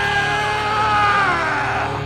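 A single drawn-out, slowed-down triumphant yell of "yeah" at the end of a training montage, loud, stretched over two seconds with a deep, warbling pitch that sags toward the end.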